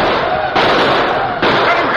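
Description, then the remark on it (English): Dense, loud gunfire crackles continuously, with two sharp surges of fresh shots partway through, like several guns firing at once in a chaotic skirmish, as riders open fire on attacking Indians in open hill country. “The Lone Ranger and his faithful Indian companion Tonto were riding uphill when they heard distant gunfire.”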